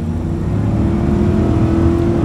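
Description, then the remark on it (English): A loud, steady engine roar builds as a Volvo XC90 Recharge plug-in hybrid SUV with a 400-horsepower T8 twin engine accelerates, its low rumble and rising tone filling the foreground without any talking. “The thrill of a 400-horsepower T8 twin engine.”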